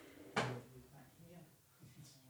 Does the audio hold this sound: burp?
no